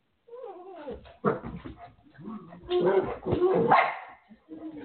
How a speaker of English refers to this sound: Hush. Hush. Yappy, yappy dog. Don't worry, mommy, yappy dog.